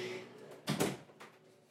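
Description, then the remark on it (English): A door shuts with a short, fairly loud thud and rattle, followed by a fainter knock a moment later against a quiet background. “Stop yelling and close the door.”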